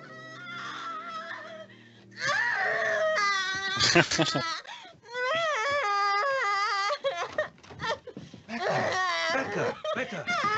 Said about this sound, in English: And every night, I had nightmares that would make me scream. Really, really loud.